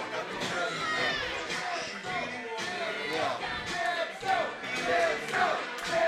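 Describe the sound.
A crowd of many voices chants and shouts together for Jim Stone, loud and steady for several seconds, with the massed vocal sound swelling in uneven surges.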